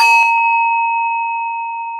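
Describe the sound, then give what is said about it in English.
A Tibetan singing bowl is struck and rings with a steady, pure metallic hum of two bright overtones, fading very slowly over two seconds with no voices. “You can do it with some Tibetan singing bowls.”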